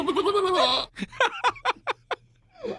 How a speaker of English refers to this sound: What was that? That's a goat. That's not a goat. Yes, it is.